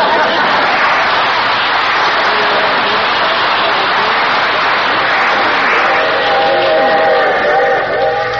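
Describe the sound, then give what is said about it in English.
A train rumbles steadily along the rails in a loud, continuous wash of noise, with faint metallic squealing tones rising near the end. “Boy, I hate these long train rides, especially to see that old gutter inspector.”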